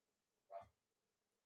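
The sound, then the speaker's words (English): A single short dog bark rings out, fairly faint, amid otherwise quiet, with another sharp sound starting right at the very end. “As the dogs are being themselves.”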